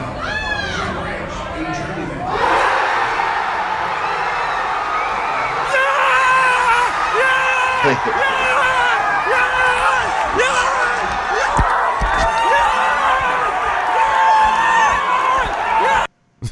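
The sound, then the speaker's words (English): A dense crowd of Buffalo fans watching the last play on monitors erupts into sustained cheering and high-pitched screams as Dalton's pass hits Boyd, loud and continuous for about sixteen seconds, with overlapping shouts and whoops before cutting off abruptly. “I mean, it, like, that is fan elation, because they go, you know, it's like crowd noise, they're all just staring, like hardly anybody's talking, and then Dalton drops back and then he throws it and then he hits Boyd and people start”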